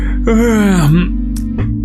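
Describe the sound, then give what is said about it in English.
A voice performs an exaggerated yawn as someone begins talking, a breathy, drawn-out groan that slides down in pitch for under a second, followed by a couple of short breaths. “like yawns as you begin talking.”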